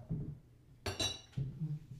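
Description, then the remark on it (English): A ceramic teapot lid clinks a few times in quick succession, bright ringing taps, followed by a softer knock, with no talking. “To all of our listeners, to all of our friends out there, feel free to send us more questions for our little tea kettle or teapot.”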